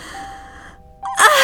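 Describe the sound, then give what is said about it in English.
A faint, steady tonal hum fills a quiet stretch, then a frightened woman's sudden loud, breathy gasp bursts in near the end, sharp like panicked, shallow breathing. “Her breathing shallow and gets louder and louder.”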